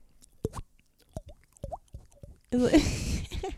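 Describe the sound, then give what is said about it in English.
Someone makes a series of wet, popping mouth clicks that imitate a dripping tap, each plop rising quickly in pitch. About four evenly spaced drips, followed by a burst of louder noisy sound. “It sounds like a drip.”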